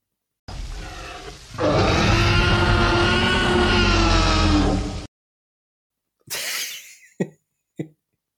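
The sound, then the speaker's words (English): The T-Rex roar from the 1993 film Jurassic Park, made from lion, crocodile and dog sounds: a rough, gravelly rumble swells into a loud, deep, bellowing cry held for several seconds, then after a pause come a few short, breathy snorts. “And then the pièce de résistance, the sound effect from 1993 that I remember freaking me out and watching my mum fly across the cinema, has to be the T-Rex from Jurassic Park. Come on, play it for me.”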